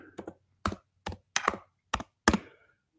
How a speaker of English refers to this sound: I'm just typing here.